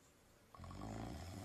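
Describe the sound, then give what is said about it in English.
A sudden, loud, rumbling snore from a sleeping woman who has fallen asleep during a Clubhouse chat starts partway through and holds steady, a deep raspy drone with a throaty rattle, prominent with no talking over it. “I think I can hear her snoring, y'all.”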